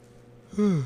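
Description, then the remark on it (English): A short yawn from a tired person, a loud voiced exhale sliding downward in pitch over about half a second after a quiet start, with no talking. “Sorry. Yawned a little bit.”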